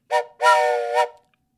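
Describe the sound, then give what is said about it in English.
A train whistle sounds two blasts, a short toot followed by a longer sustained chordal blow, loud, with no talking and silence after. “Very standard type whistle blow this week”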